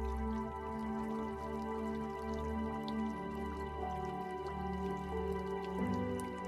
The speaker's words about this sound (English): The closer you get to this river, you notice how pristine and crystal clear the water is. Listen to how soothing the water sounds.